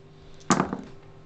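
four dice being rolled

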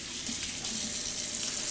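water running from faucet

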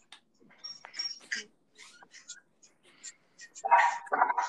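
dogs barking

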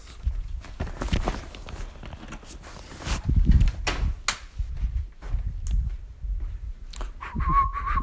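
person whistling

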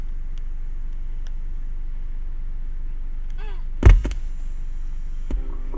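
inside a car

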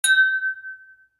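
glasses clinking

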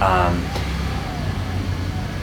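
car passing by

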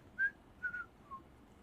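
person whistling a tune

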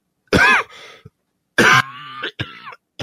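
cough

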